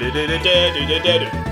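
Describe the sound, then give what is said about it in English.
A voice hums a short, bouncy victory jingle, a quick run of distinct sung notes stepping up and down in pitch, imitating the winning music from the video game Donkey Kong Country, with nothing else in the background. “Every time I think of Donkey Kong Country, all I can hear is the winning music where it goes.”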